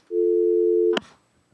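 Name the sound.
telephone busy signal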